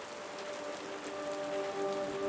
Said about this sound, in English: They hurried into a small cave, soaked in rain, wringing out their clothes. They laughed at the sudden downpour and sat to wait out the deluge.